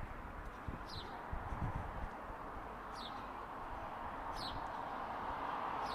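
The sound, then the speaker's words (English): A blackbird in a bush beside a road of terraced houses sings brief, high phrases that repeat every second or so, thin and struggling against a constant loud wash of passing car traffic. “A blackbird sits in a bush off to the side of the road, battling to make its voice heard above the traffic.”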